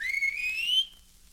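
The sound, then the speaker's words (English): A person gives one clear, rising whistle to call a horse, lasting under a second and loud, then it cuts off into near silence with no answer. “He always answers when I whistle to him.”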